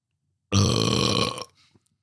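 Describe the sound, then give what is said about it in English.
A single loud, drawn-out burp, let out by someone drinking beer during a moment of silence for Jimmy Buffett, rumbles for about a second after near silence, full-bodied, then trails off into quiet with a faint click at the end. “Jimmy would have wanted me to burp.”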